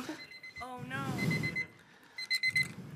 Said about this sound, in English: I think the beeping's helping me. Yeah, it's great. Can you put it closer to my ear?